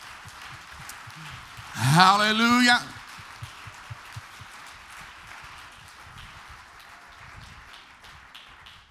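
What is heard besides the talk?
audience hand clapping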